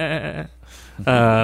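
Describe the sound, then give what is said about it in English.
A goat bleats twice, loud, with a brief silent pause between the wavering first cry and the steadier, drawn-out second one. “there's some goats that are like getting in your way as you're trying to have conversation with each other”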